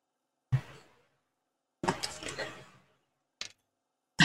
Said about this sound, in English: For audio listeners, we all just yawned dramatically.